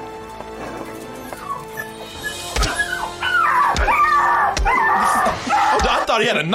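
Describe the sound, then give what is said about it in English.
After a brief spoken line, a person imitates a dog yelping and whimpering: a run of loud, high-pitched wavering cries, punctuated by a few sharp thuds. “Oh, this is the point where I couldn't tell if that was a dog or was that a person.”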